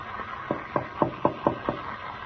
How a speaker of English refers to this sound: He knocked at the door and then skipped off down the corridor.